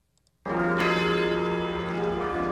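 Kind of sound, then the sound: signal or alarm, church bells tolling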